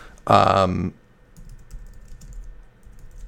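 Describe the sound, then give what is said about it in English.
Soft, rapid clicking of keys being typed on a computer keyboard, quiet and steady in the background, following a brief voiced sound at the start. “So if you guys can hear me typing, I do apologize.”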